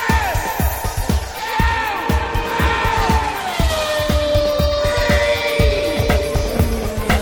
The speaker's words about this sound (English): That car you just heard going by was the 007 AMR1 of Aston Martin.